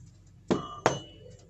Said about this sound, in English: Another knock.